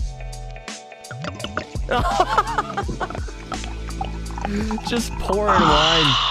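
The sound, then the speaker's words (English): Wine glugs and splashes into a glass, a steady gurgling pour whose pitch climbs as the glass fills, ending in a brighter, hissing trickle. “Just pouring wine.”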